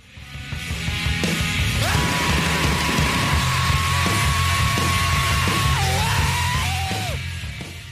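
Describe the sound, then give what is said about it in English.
A rock singer lets out a long, loud, sustained scream held for several seconds, then breaks and wavers at the end, all over a dense, pounding snare drum roll and heavy band backing. “We're going to have to do a drop-in, but the scream he lets out at 1:02...”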